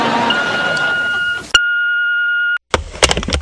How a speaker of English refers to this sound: Please leave a message at the beep.